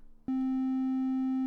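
A synthesizer triangle wave tone switches on abruptly after a moment of quiet and holds one steady, mellow pitch with a soft, slightly muffled character, sounding alone and fairly loud.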